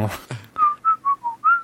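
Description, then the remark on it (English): A brief vocal burst, then a person, laughing while trying to whistle, whistles a short tune of five clear, sustained notes that rise and dip slightly in pitch, fairly loud. “I was trying to whistle, but I was laughing.”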